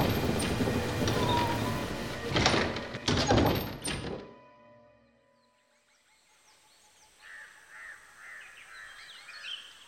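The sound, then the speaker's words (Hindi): A heavy door creaks and bangs open and shut several times in strong wind and rain, its door chain rattling, loud, before the noise cuts off and leaves a quiet backdrop with faint bird calls. “दरवाजे की साखल भी बज रही थी और चरमराता हुआ वो भारी दरवाजा भी खुल और बंद हो रहा था”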